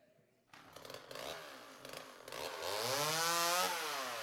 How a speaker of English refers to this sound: A chainsaw.